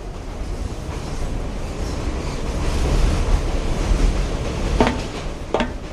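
An elevated train rumbles steadily along rails with a dense low roar and rattling, swelling slightly louder midway, with two sharp metallic squeals or clanks near the end. No one speaks.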